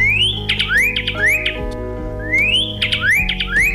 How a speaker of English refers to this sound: That name, Pyraloxia, combines its genus and species names, which mean flame-colored and crooked. A pretty good description of this bird with its bright red markings and its stubby, seed-crushing bill. It's Cardinalis sinuatus, the Pyraloxia.